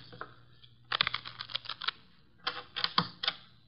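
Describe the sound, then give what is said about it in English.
Playing cards are shuffled for a hand of poker in two quick bursts of rapid, crisp fluttering clicks, separated by a short pause, with no voices. “The cards are shuffled.”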